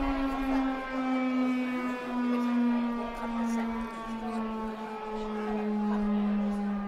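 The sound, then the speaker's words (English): A civil defense siren wails steadily throughout, a loud, sustained tone rich in harmonics that slowly sags lower in pitch, with faint background noise underneath. “Was the siren on there?”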